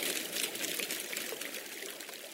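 A steady rush of water flowing in a mountain stream, continuous, with a bright splashing hiss filling the whole stretch and no voices.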